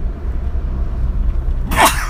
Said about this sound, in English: Is that the first sneeze on driving theology?